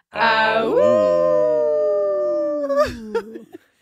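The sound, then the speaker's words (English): People imitate a wolf howl, a long sustained wavering cry that slides slowly downward for about three seconds before breaking off into a few short yelps, loud. “Now's the time to howl out.”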